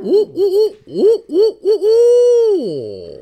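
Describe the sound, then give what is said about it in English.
A person imitates a hoot owl call: a rhythmic run of short, throaty hoots ending in one long, drawn-out hoot that slides downward, voiced loudly without any talking. “You're the hoot owl expert.”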